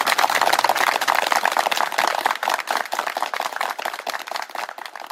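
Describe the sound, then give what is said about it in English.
A crowd in the UK clapping together in a national clap honouring a centenarian and NHS health workers, a dense, crackling patter of many hands that stays loud throughout and eases off slightly toward the end, with no voices. “Yesterday there was a national clap to honour him and health workers.”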